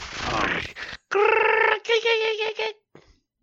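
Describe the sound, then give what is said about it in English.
A man's voice imitates a predator's growl in three rough, strained vocal bursts, loud and harmonically rich, followed by a brief faint trailing grunt. “Predator noises.”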